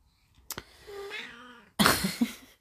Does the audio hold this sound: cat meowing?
yes